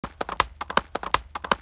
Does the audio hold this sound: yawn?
no